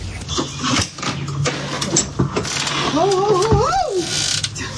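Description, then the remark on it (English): A small car motor runs steadily as the car drives down a homemade wheelchair ramp outside a trailer, whirring with rattly mechanical clatter throughout, and a brief wavering whine rises over it toward the end. “this is Wendy going down the wheelchair ramp that her brother built her right outside the trailer”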